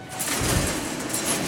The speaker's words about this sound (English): A huge overhead door rattled open, and a truck that had been waiting on the other side slowly pulled into a massive warehouse-like room to unload its cargo of rainbow trout.